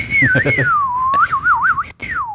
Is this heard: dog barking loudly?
no